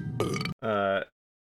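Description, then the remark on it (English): Two loud belches in quick succession: a short rough one, then a longer, deeper, resonant one that cuts off into silence. “Belch. Belch.”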